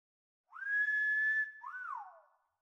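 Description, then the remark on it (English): Someone whistles a long, steady held note, then a shorter note that swoops up and back down. The two-part whistle is clear, with silence around it and no talking. “Others in the house would hear the whistles and rush into the night to see the culprit, but they never caught even a glimpse.”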